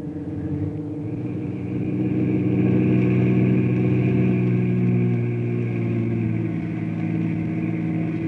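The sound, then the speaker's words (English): A car engine grows louder as the vehicle drives up, settling into a steady, low hum with a rumbling undertone and no voices. “You fellas wait in the car.”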